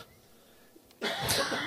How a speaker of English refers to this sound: I just had a cough, Hunty. Is that all right?